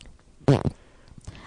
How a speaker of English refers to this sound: She farted.